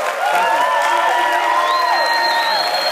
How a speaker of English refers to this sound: And everybody really in the room, all of the student athletes here at Texas A&M Commerce, give yourselves a round of applause for everything you do.